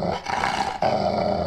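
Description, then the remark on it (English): A dog growls loudly and menacingly, a rough continuous snarl that briefly dips before surging back even harsher for the rest of the moment. “Sorry, I just, like that was Putin's dog.”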